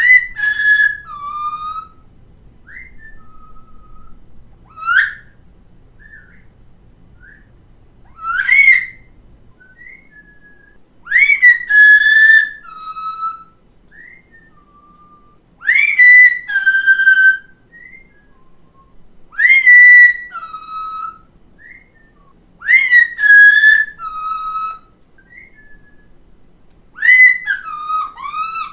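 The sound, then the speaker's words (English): A pet parrot gives loud, bright, warbling whistles in repeated bursts, whistling back in response to its owner's faint human whistle far away in the background, as the bird answers each call. No one speaks. “And you'll hear me whistling way far away in the background, and that's my bird whistling right back.”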